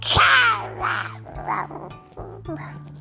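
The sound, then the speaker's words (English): A person growls out a monster roar in a loud, gravelly voice: one long opening snarl followed by a few shorter, rougher growls, alone with no other talk. “Please call me … from now on, and I won't roar at you like this. Roar!”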